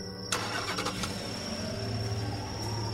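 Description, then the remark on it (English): A car engine cranks briefly, then catches and starts, settling into a steady low rumble with a faint high whine running over it. The engine is fairly loud, with no voices. “Sure enough, it started up, with a sigh of relief from all three of us.”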